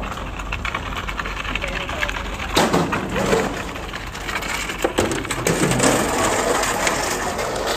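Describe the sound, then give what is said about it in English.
Lobster traps being brought down to a wharf on a small island to be loaded: continuous loud scraping, creaking and wooden clatter, with heavier crunching bursts partway through over a steady low rumble. “The sounds of traps being brought down.”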